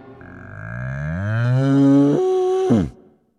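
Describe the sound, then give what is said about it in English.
A single long, loud cow moo, rising in pitch and holding a strong tonal bellow for about three seconds before cutting off abruptly, with no other sounds. “On the side of the bed where her husband was sleeping a moment earlier was now a 1.5-ton cow.”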